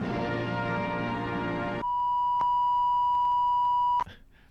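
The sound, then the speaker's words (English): An emergency broadcast system tone: a harsh, buzzy electronic blare for about two seconds, then a steady, piercing pure tone held for another two seconds before it cuts off abruptly. “I just think that's the emergency broadcasting thing.”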